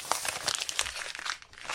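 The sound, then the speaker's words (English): Sheets of notebook paper with old essay notes being crumpled and rustled, a dense run of crackly, crinkling bursts that continues steadily without pause and no voices. “Use the fucking paper from your paper flying everywhere.”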